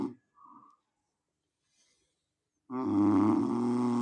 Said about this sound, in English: You hear that? That's … snoring.